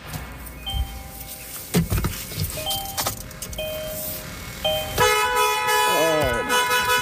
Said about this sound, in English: I'm gonna honk the horn and try to scare it out of there. Hold on a second.